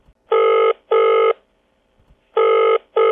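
A telephone ringback tone purrs in two pairs of short, harmonically rich bursts, each about 0.4 seconds long, separated by a pause, loud and clear with no voices, as a call is placed to a guest.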